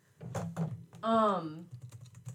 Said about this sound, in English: Sorry, if you hear my clicking. I'm trying to look at this photo and it won't let me. There we go.